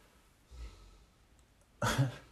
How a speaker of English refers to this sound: And I apologize if you can hear my dog snoring.